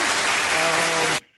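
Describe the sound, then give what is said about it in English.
A burst of 'bathroom applause' sound effect: a loud, dense wash of clapping that holds steady for just over a second, then cuts off abruptly into near silence. No one speaks over it. “That was the bathroom applause.”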